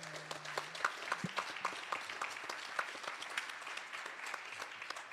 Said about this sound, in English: Before we do that, though, please give this panel a round of applause.